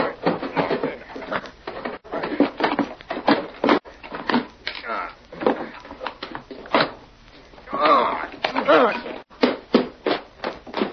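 A door being pried open with a bar wedged in the lock: a run of rough scraping and knocking bursts, with a strained, squealing creak partway through as the wood gives.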